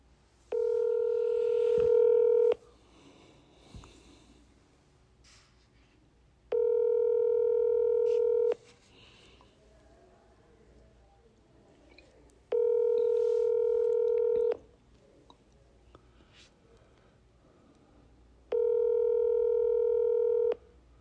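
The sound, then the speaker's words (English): A phone ringback tone from an outgoing call repeats four times, each steady two-second burst separated by about four seconds of quiet line hiss, clear as if heard through the handset; the call goes to voicemail. “It's ringing, huh?”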